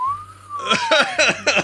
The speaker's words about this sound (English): How about a question? What would you do for a question? Question mark is tough, right? What would you do? I just whistle.